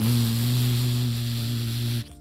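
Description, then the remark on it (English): Airplane engines roaring during takeoff: a loud, steady rushing roar with a deep droning hum underneath, holding constant for about two seconds before cutting off abruptly. “It is pretty noisy when you're taking off because the airplane has to go really fast, so the engines get very loud.”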